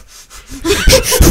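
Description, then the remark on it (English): A voice imitates a rhythmic breathing pattern, a run of short, forceful breathy puffs and huffs that grow louder and rougher toward the end, with no words. “Doing like what you do when you, you know, the breathing you do when you're, you know”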